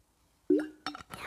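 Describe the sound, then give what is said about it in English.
A glass clinks, followed by a couple of short splashy bursts of water being poured while someone gets a drink of water, all within about a second, with no one speaking. “Oh, I'll just get some water here.”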